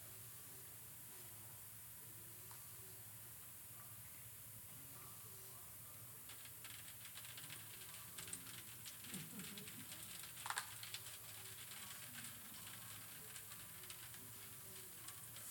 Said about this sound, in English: So here's our vessel. More water just went into the big pitcher. And I'm going to be filling this vessel, and you're going to see that it starts leaking.